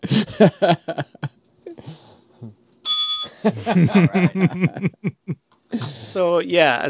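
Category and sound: signal or alarm, bell ringing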